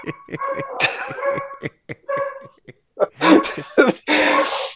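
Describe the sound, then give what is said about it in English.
Hound dogs bark and bay excitedly in a rapid run of sharp, overlapping yelps, loud, with a few longer, rougher howls breaking in toward the end. “Dude, the hound dogs just went nuts.”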